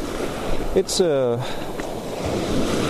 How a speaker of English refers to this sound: I have to experiment a bit with the microphone here because, as I said, it is pretty noisy and pretty windy. I think this might be a bit better than just before.